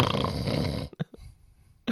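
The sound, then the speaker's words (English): A person mimics loud snoring with one long, harsh rasping snore, then a few short snorts and a brief pause before another rough snore starts. No other talking. “That's, by the way, that's that you've just got a preview of what the lovely Louise has to put up with on a regular basis.”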